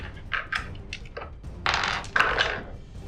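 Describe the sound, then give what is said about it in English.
Two dice clatter and rattle across a table in a few quick bursts, fairly loud, with a brief busier tumble near the end. “Just roll 2 dice.”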